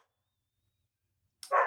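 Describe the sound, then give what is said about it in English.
After a long stretch of near silence, a dog lets out a single sharp, loud bark right at the very end. “Doggy's had enough of F1 this year.”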